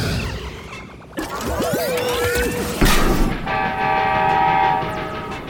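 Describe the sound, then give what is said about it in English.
A train headed for a water tower rumbles loudly, with a long, steady horn blast sounding over the clatter, then a second sustained horn tone as the heavy rolling noise continues. “She transformed back into the train?”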